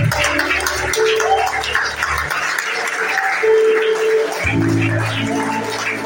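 An audience at a church service stands and claps hands for the Lord in a dense, steady wash of applause-like patter, mixed with sustained low keyboard or organ tones and some indistinct voices.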